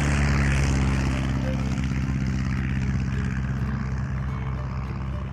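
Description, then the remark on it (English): An open-topped Moth propeller airplane rattles down a runway and takes off, its engine roaring in a loud, steady drone, its buzzing low hum and rough rattle continuing throughout and easing slightly toward the end. No one speaks. “She rattled down the runway and soared seamlessly into the air.”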